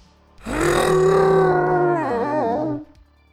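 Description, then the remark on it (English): A man with an injured neck, head raised towards the sky near a train station, lets out a single loud, sustained animal-like howl, rich and harmonic, wavering in pitch toward the end before cutting off after a couple of seconds. “He straightened up his head towards the sky, clearly struggling from his previous neck injury, and let out one last howl.”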